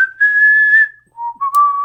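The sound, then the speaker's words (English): Someone whistles a short, made-up melody: a long sustained note, a brief pause, then a couple of lower and rising notes, clear and fairly loud with no talking. “That's what I thought you were whistling.”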